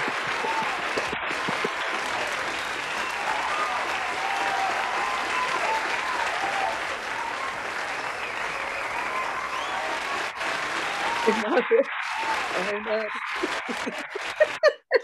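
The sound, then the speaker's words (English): A crowd applauds the director steadily for about twelve seconds, a dense, even wash of clapping with scattered chuckles, before it thins and a voice briefly speaks at the end. “The director doesn't usually get the applause, so I appreciate it.”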